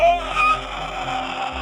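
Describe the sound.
A voice imitates a deafening, shrieking, warbling roar erupting from the center of a crowd: a harsh, strained screech with wavering pitch that holds steady for under two seconds and then cuts off abruptly.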